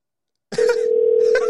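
After a moment of silence, a phone line tone starts and holds steady as a call is placed to someone, ringing out, with a short cough-like noise breaking in near the end.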